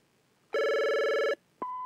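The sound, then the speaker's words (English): A telephone rings with a loud, steady electronic tone lasting under a second, then after a brief pause a second ring begins, clear with no one talking. “More phone. Phone bone. Hello?”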